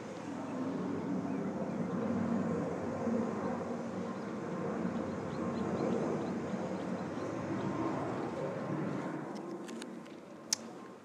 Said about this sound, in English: And now we take you to an airplane flying through the sky.